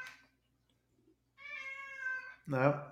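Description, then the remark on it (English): A cat meows insistently: a long, drawn-out plaintive cry followed almost immediately by a louder, lower, harsher yowl, sounding distressed. “I hear fucking meow meow. Yeah, that's the baby. I don't know why he's upset, but he is.”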